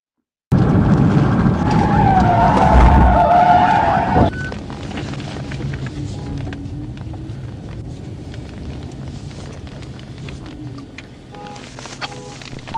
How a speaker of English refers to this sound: An Arkansas woman is suing police after a pit maneuver flipped over her car while she was going 60 miles per hour while she was pregnant.